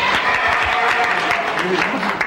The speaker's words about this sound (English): why are you applauding a Pullman car? There aren't any more Pullman cars.